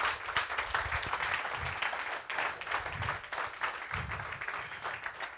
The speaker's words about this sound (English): Est-ce qu'on peut applaudir la présence de Dieu ce matin?